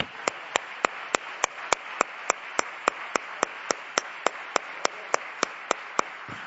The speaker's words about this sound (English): And wasn't it wonderful what she said? Let's clap our hands. We're so grateful.